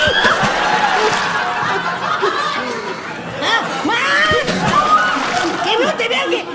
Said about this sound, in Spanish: A ver, échate tantita agua aquí.